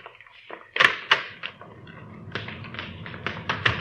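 The back door of a house opens and closes, a rapid series of sharp clicks, taps and light thumps from the latch and frame, with no voices.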